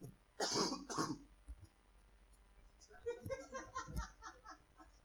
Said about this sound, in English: Better than last week. I was killing y'all last week with that cough, boy.